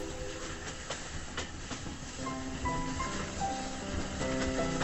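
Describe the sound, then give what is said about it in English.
A train rolls past with a steady, heavy rumble and rhythmic clacking of wheels, while faint sustained hooting tones rise over the noise in the second half. No one speaks. “And the corn, like drunken grenadiers, topples tarnished, whispering at the hooting train.”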